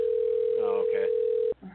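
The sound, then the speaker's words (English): A steady electronic phone tone drones for about a second and a half, then cuts off abruptly, with faint voices talking over it. “It's not ringing. Like, it's not even giving us a chance for him. Damn. There you go. Something's ringing.”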